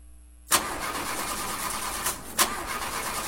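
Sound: car engine cranking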